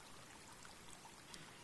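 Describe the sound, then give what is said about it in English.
A white cloth is dipped into dyed water, making a soft, continuous sloshing and trickling sound that stays steady and fairly quiet throughout, with no voices. “When this cloth went baptized into this water, the dye infused into every fiber, didn't it?”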